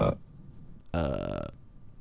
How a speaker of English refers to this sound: Burping over there.